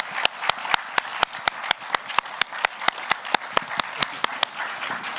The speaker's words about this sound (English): And would you join me in giving one more round of applause to our presenters and our moderator for tonight's discussion?